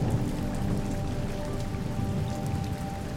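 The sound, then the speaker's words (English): Steady rain patters on a hard surface, a dense, continuous wash of droplets with a low rumbling undertone, even in loudness throughout, with no voices. “So I start to work on some legal matters for some clients and try to find some solace in the sound of that rain.”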